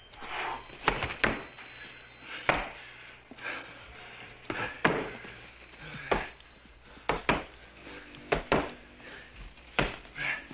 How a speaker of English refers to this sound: Here now is Dalton takes out his rage on a punching bag as Wade tries to dissuade him from facing off against Wesley's fierce lieutenant, Jimmy.